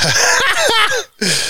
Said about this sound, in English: I don't know why I'm coughing so much today. Jeez. Maybe it's also the tubing.